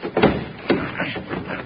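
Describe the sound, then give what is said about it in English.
A heavy sliding door being worked open: a few clunky wooden knocks and rattles, with two sharp thuds and a scraping rumble between them, fairly loud and without talk. “Quit asking fool questions and slide that door back, Red.”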